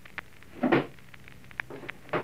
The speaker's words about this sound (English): is that you slamming the door?